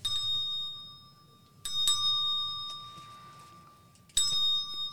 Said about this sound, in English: Even Sarah found one Christmas that she could no longer hear its sweet sound. Although I've grown old, the bell still rings for me as it does for all who truly believe.